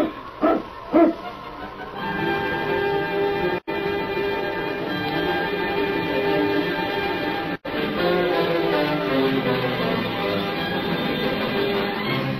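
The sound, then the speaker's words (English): A couple of sharp dog barks from a Mountie's sled dog team, led by the dog King, ring out at the start as the team sets off on the trail to Ogden City, then give way to a steady, dense wash of sound with bright, ringing bell-like tones running underneath for the rest. “The great dog King led the Mountie's pack on and on, back over the trails to Ogden City.”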